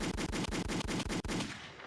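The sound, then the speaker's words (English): A loud burst of gunshot sound effects, about ten shots fired in a fast, even rapid-fire rhythm before trailing off into a short fading echo. No one speaks. “I got to give gunshots in the chat.”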